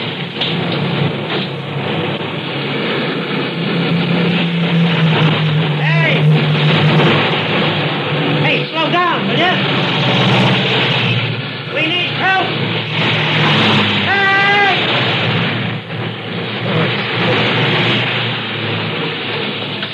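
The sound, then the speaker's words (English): Loud, steady rush of traffic on a four-lane highway, a dense continuous roar of vehicles speeding past with brief rising and falling swells throughout the twenty seconds. “I can't get across those 4 lanes of traffic.”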